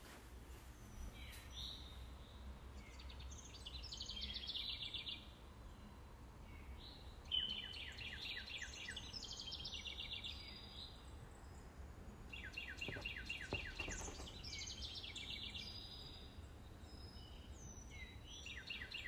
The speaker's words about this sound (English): Damn, it's so nice and peaceful. You hear the birds outside.